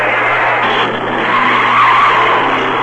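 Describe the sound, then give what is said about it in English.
A car accelerates with a wide-open throttle, roaring while its tires squeal loudly and continuously, a sustained screech over a steady engine drone, loud with no voices. “There goes a driver who doesn't care much about money. He's wasting gasoline.”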